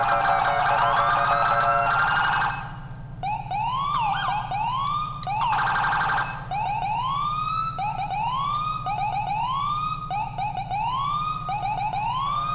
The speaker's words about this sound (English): Federal Signal Smart Slide. Believe this is Federal Signal SS2000. Federal Signal Smart Siren 2000.